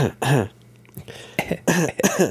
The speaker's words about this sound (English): Like, I used to, like in school and stuff, like in high school. Yeah. You know, like you had to cough and it was quiet in class.